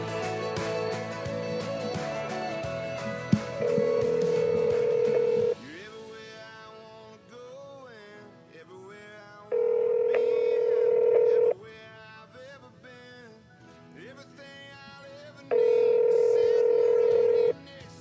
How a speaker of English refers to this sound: Come on, brother. Answer your phone.